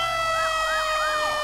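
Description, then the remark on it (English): A fire engine siren wails in quick, repeated rising-and-falling sweeps over a layer of steady high-pitched tones, loud and unbroken throughout with no voices, as the fire department comes after smoke detectors went off from an equipment meltdown. “Now I've got smoke detectors going, I got the fire department coming.”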